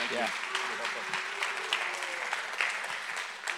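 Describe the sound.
A crowd applauds steadily, a dense wash of clapping that holds for several seconds, with a few faint voices and brief cheers rising under it.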